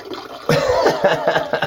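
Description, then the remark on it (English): Water trickles and splashes in a bathroom while someone uses the bathroom, starting abruptly after a brief quiet moment and then running steadily with an uneven, bubbling texture. “I'm using the bathroom right now. I don't know if you can tell.”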